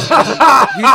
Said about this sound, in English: Gesundheit. That was a cough. God bless you. That's a cough.